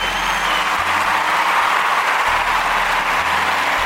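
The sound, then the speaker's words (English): A steady, dense wash of hand claps, like a crowd applauding, runs loud and unbroken for about four seconds with no talking over it. “We're going to give some hand claps for that, man, because it's football talk, baby.”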